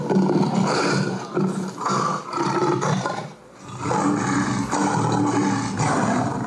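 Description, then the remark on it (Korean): A young lion roars in a video in loud, sustained bursts, several deep rumbling roars separated by brief dips, dominant with no talking. “예, 사자가. So young lion.”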